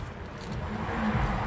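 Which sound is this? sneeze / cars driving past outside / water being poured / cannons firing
cars driving past outside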